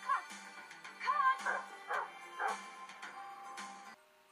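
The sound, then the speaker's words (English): A dog in a film yips and whimpers in a quick run of short, high-pitched cries and barks, several bursts spread across a few seconds, moderately loud over a faint background hum. “Looks like the shaggy dog.”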